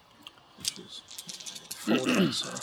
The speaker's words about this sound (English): Okay, roll those dice. Which skill was it again? Scouting, I think.